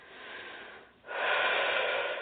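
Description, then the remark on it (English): A slow, deep breath during an energy healing session: a steady airy inhale, a brief pause, then a louder, rushing exhale that carries to the end. No one speaks. “So FYI, sometimes I do some snapping or clapping to help move the energy along with some deep breathing.”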